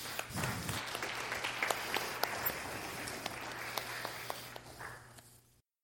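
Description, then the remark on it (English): An audience breaks into a round of applause, dense overlapping claps with sharp individual hits standing out, holding steady for about five seconds before cutting off abruptly, with a faint low hum underneath. “You can do a round of applause, too, again.”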